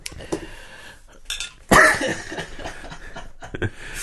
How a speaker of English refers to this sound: We moved on to the next beer and bad idea. Went down the wrong pipe.